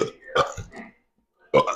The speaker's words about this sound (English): Wait, can you guys burp on command?